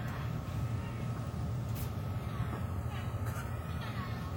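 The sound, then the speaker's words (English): A weed whacker runs steadily outside, its low buzzing drone joined by a thin high whine that slowly rises and falls in pitch, continuous and moderately loud throughout. “No, it's a weed whacker.”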